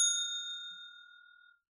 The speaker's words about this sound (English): I'm going to hit the bell here.